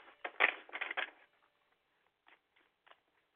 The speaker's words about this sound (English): Okay, and one more shuffle.